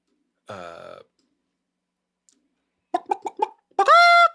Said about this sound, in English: Here, chickens, come get your meal.